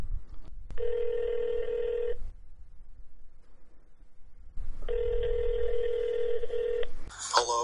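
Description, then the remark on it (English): Two long ringback tones from an outgoing phone call, each about a second and a half with a pause between, sounding slightly tinny over a low background hum, ending in a click as the call connects. “We are able to phone him. All right. Calling Walter.”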